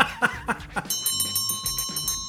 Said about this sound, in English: Oh, listen to that. There's the closing bell. Saved by the bell.